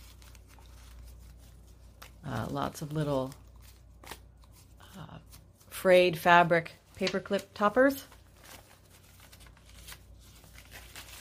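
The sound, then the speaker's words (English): Paper pages of a Victorian-style junk journal being flipped and handled, with quick crinkly rustles and soft flaps scattered throughout, while a person talks over the middle stretch. “Flip Through of a Victorian Style Junk Journal”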